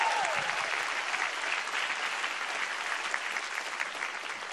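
A crowd breaks into sustained applause, a dense, steady wash of clapping that holds at an even, fairly loud level for several seconds without any voices standing out.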